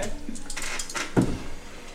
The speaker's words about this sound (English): Both of you roll me a 1d100.